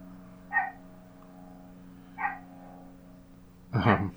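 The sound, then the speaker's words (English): A small dog named Lou yaps three times outdoors, barking at a biplane, with spaced single barks, the last one louder, over a steady low droning hum in the background. “Is that our dog? Yeah.”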